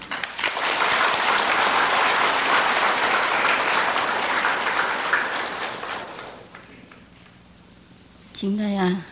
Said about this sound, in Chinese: 现在呢，我们以最诚挚的心呢，来恭请我们清海法师开示，热烈的掌声。